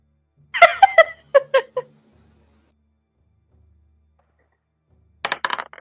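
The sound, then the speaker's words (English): A die clatters across a hard tabletop in a rapid run of sharp clicks that settle within about a second, landing on a natural 20 in a tabletop game. After a quiet pause, a brief burst of louder noise follows. “That is a nat 20, people!”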